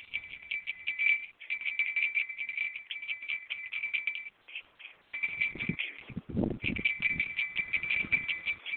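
A handbell is shaken steadily outside in freezing cold and snow on Christmas Eve, rung for a few seconds to end the year 2020. It produces a continuous bright, high-pitched jangle that stops briefly partway through, then resumes over some low thumps and rumbling.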